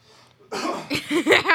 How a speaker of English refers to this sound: You kept coughing, which is now what I'm going to keep doing